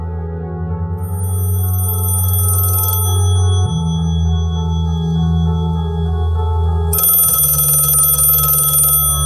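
A telephone rings in two bright, buzzy bursts, the first about three seconds long, then a pause and a second ring, over a steady low droning hum. No one speaks.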